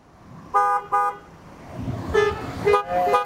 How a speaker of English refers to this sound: I'm alive. I'm in my car. I'm honking my horn. I'm alive.